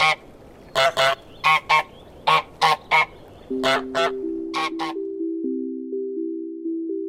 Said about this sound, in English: used a recording of a French Toulouse goose for an all-new squeaky honk, which adds even more charm to the game's unique sound.